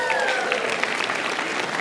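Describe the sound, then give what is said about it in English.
A crowd applauds steadily to welcome the Kyleryville campus. The clapping is a dense wash at a constant moderate loudness throughout, with faint tonal whoops or a brief cheer rising early on. “And I also want to send a warm welcome to our Kyleryville campus, because can we give Kyleryville a round of applause, please?”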